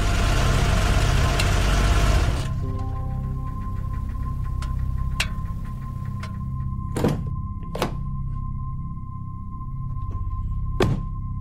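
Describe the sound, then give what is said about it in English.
A car engine idles in the driveway of a house off a dark country road, with a steady low rumble and faint whine, following a brief burst of rushing road noise. A few sharp clicks and thunks sound over the hum. No one speaks. “I took a deep breath and I turned into the driveway and made my way toward her.”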